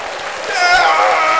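A short burst of applause, steady and fairly loud, with a few voices cheering or whooping over the clapping partway through.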